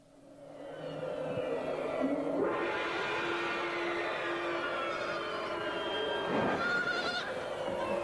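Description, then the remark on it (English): Goats bleat loudly and almost continuously, their wavering, strained cries overlapping one another, with a rougher burst near the end and no talking. “Those little goats have to look out for an eagle.”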